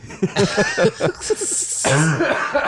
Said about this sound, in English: There's that Aussie cough. You got me. Actually, it's a Canadian cough then, isn't it? What you got now? It is a Canadian cough.